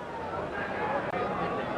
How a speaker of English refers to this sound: In this recent match against Uruguay at Melbourne's Olympic Park, the fans voiced their approval as Australia's part-time professionals more than held their own against opponents seeded fourth in the world today.